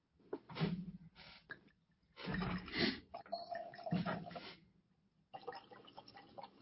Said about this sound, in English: Yeah. Did you hear? It's not like somebody's peeing, but you can hear somebody's pouring from the bottle.